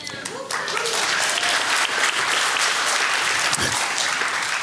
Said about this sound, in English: You know, I'm pouring my heart out, bro. You just stand here and people applaud for you. That's unbelievable.